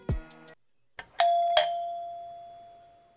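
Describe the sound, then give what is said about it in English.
A doorbell chimes twice in quick succession, a bright ding-dong whose second tone rings on and slowly fades, heard clearly with no talking. “Then they suggest that they all head into town for dinner when the doorbell rings.”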